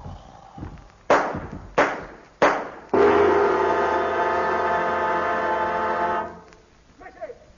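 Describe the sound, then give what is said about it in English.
Three sharp gunshots ring out in quick, evenly spaced succession, each with a short echoing decay, followed by a loud sustained droning tone that holds for several seconds before cutting off. “I hear gunfire!”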